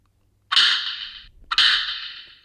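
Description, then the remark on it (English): The parry slap sound effect from the video game Cuphead, where the character jumps and turns pink, plays twice, each a sharp, bright smack with a hissy ringing tail that fades over most of a second, about a second apart, with no voices. “The slap from Cuphead where you jump and you turn all pink.”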